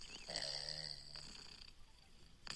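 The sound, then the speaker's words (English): A cat purring softly, a low steady hum lasting about a second with a faint high tone above it, then quieter rustling before a brief burst at the end, played as a sound in a sound app. “It's a purring cat.”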